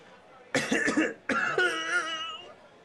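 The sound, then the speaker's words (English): A person gives three quick coughs in a rapid cluster as a signal that they are okay, followed right away by a longer, drawn-out voiced sound, fairly loud against a quiet background. “Cough three times if you're okay.”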